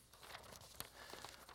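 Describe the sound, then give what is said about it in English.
A sheet of paper is handled, giving soft rustling and crinkling with one sharper crackle partway through. It is quiet and brief, with no voices. “And at the end of the day, I came away with this paper right here.”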